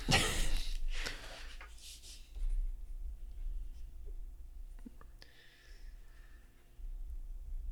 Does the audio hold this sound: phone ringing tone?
no